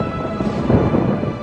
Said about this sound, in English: and the skies began to thunder.